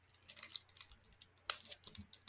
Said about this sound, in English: calling the big guns with the scissors there, and let's see what he's got